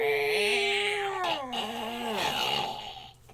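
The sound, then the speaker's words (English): A long, loud squeaky creak of a box made extra squeaky being opened, drawn out for about three seconds, its strained, whining pitch sliding downward and wavering in bends before fading. “So it's sort of appropriate that we would have a creaky box today, because I'm going to talk about a creaky album.”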